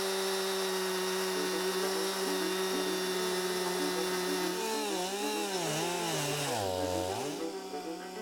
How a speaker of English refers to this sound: The chainsaw is like getting on a jet plane, going somewhere that would take you 3 or 4 days to get there, and you get there in 7, 8 minutes with the chainsaw. Starting to shape up, slow but sure.